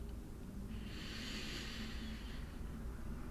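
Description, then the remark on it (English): A slow, deep breath, a soft airy hiss that swells and fades over about two seconds against a quiet low rumble, with no talking. “When I'm breathing in, I can feel my belly first slightly expand and lift, and then my chest opens up.”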